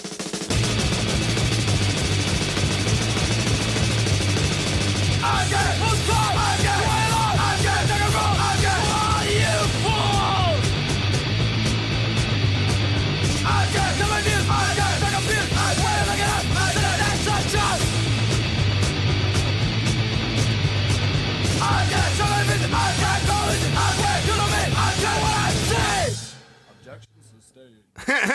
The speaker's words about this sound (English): I love at the very end of that song where the guy goes, "Objection sustained." Well, the great thing about like old school hardcore is they're gonna get to hear the whole song on this one. They literally can't. It's like a 45-second clip.